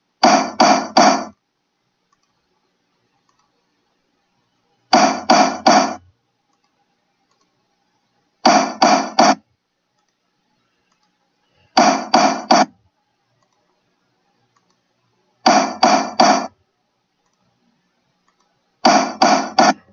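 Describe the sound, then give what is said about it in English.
A judge's gavel bangs again and again in a court session, sharp, loud wooden knocks struck in six quick clusters of three or four blows, each cluster separated by a few seconds of silence. “In fact, I'm so worthy of it, I'm gonna bang it 10 times.”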